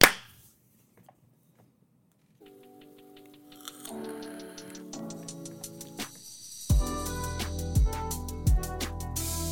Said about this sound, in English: All right, I'm recording. Give me a clap on three. One, two, three.